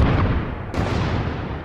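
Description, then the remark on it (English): A loud, continuous roar of deep rumbling with heavy low-end booming, volcano eruption sounds made with audio software, filling the whole moment with dense, churning noise and no voices. “The bubble sounds you just heard were from audio software, and the volcano sounds you heard were also from audio software.”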